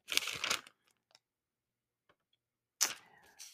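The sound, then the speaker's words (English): Pages of a large Bible being turned while searching for a scripture in the book of James: two loud papery swishes, one at the start and one near the end, with faint soft ticks and rustles in the quiet gap between. “Like I said, I know y'all can hear me turning the pages of this big old Bible.”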